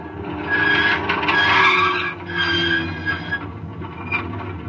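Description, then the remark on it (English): A howling high wind storm blowing at 113 miles an hour roars steadily, with shrill whistling tones that swell and fade in waves over a dense, rushing noise. It stays loud throughout, and no one speaks. “By the time we reached the water storage tanks, the wind was up to 113 miles an hour.”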